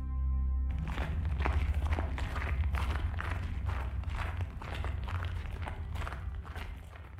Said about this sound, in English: His footfalls crunched the snow beneath them. The frozen ground, swaddled in its diamond-dusted blanket, cracked, scattering small echoes into the fresh-born sky.